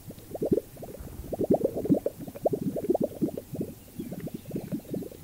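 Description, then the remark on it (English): A male Gunnison sage grouse of the United States displays, inflating its specialized neck pouches and quickly jerking its head and wings: dense bursts of low, bubbling, gurgling pops like clogged plumbing, coming in rapid irregular clusters of moderate loudness with no voices. “The male Gunnison sage grouse of the United States produce distinctive sounds like clogged plumbing by inflating their specialized neck pouches and quickly jerking their head and wings.”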